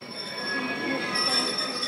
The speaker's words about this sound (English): The train from the Donbas pulls into the central eastern town of Dnipro for a 45-minute stop each evening. It crosses Ukraine from east to west once a day, every day, bringing people to safety.